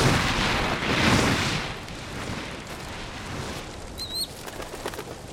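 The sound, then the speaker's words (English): A burst of loud, whooshing wingbeats from a hawk taking off, quickly fading as it flies off, followed by a brief high chirp and a quiet rustling background. “He took that hawk's body.”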